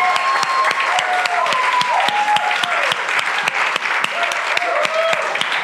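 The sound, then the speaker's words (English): A church audience at Redemption Church claps steadily and loudly, with sharp hand-claps throughout and whooping, cheering voices rising and falling over the top, cheering on people being baptized. No one speaks in words. “Let's stand up together and cheer these guys on.”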